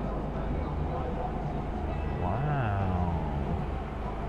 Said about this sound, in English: Oh, a boat's passing under me. I don't know if you hear that. Wow, that, oh my god, that looks like so much fun.